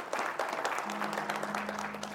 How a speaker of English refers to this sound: To our first-time guests and our television audience, welcome to Faith Bible Church. Let's give both our television guests and our first-time guests a big, huge round of applause, Faith Bible.